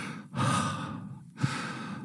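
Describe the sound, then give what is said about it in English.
A voice imitates heavy breathing: two long, forceful breaths, each a broad rushing exhale followed by a brief pause, fairly loud with no talking. “And the heavy breathing started once they saw the sign.”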